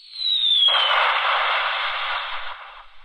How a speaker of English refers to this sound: And that sound effect was a bomb being dropped from a plane, right? That's what it is.